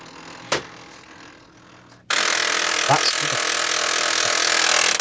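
An old printer suddenly starts up with a loud, steady mechanical whirring and grinding that runs to the end, preceded by a single sharp click in an otherwise quiet stretch.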